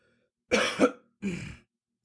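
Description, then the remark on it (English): Two rough coughs in quick succession, the first with a double burst, the second shorter, with silence around them and no talking. “And I'm sorry for the coughing as well.”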